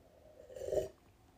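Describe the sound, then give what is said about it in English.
A single quiet slurping sip of coffee, a soft airy swish lasting under half a second, with a faint low gulp beneath it and near silence on either side. “I mean, sorry, that was me sipping a couple, taking a sip of coffee here.”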